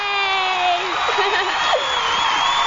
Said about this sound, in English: The crowd's going crazy! 100 episodes! Yeah!